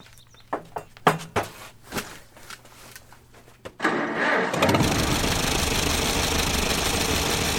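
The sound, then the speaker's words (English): An old restored tractor engine cranks over with a few uneven sputters and coughs, then catches and roars into a loud, steady rumbling idle that continues to the end. Nobody speaks. “It sounds just like an old tractor should, even when restored.”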